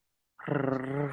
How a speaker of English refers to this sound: This is ASMR farting a microphone.